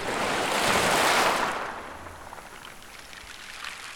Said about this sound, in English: Let's stay outside a couple minutes longer in the Costa Rican rain. Audio Luke captured for another track on Nature Escapes.